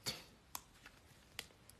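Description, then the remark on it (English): Scissors snip open heavily wrapped packaging of a Gaia Labs product: a handful of short, crisp cuts at uneven intervals, fairly quiet, the last one sharpest, with no voices. “I have these scissors right here. I'm just gonna open them with this.”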